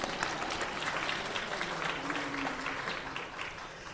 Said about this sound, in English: Y'all could clap, it's okay.